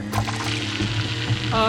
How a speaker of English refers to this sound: It's dripping, and it's dripping! It's melting the metal!